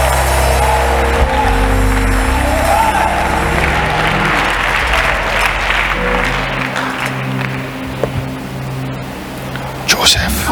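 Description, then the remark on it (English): An audience claps loudly and continuously, with voices shouting through the clapping, while sustained low organ-like tones play underneath and then drop away partway through. “And if you can clap and shout, a blessing is upon you.”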